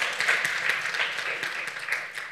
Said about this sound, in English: When Scripture says that, yes, that you can give God a round of applause for that.